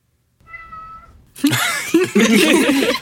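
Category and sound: animal, cat meowing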